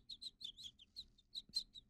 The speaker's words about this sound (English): The birds can peep.